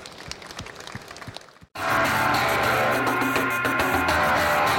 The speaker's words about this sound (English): Thanks so much for coming along. Thanks to our guests, and thanks to Vita Mojo. Big round of applause. Thank you.